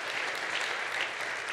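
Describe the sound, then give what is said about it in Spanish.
An audience at a church service claps together for God in a dense, steady burst of applause, many hands at once filling the space evenly with no talking over it. “Si lo cree, dale un aplauso al Señor.”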